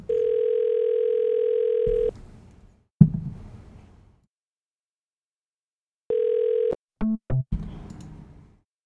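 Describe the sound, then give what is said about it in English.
A telephone ringback tone from a call to a gas station sounds once for about two seconds, then silence with a few handset thumps; a second ring starts and is cut short by clicks and fumbling, with no answer. “What kind of crap gas station doesn't have an answerable phone?”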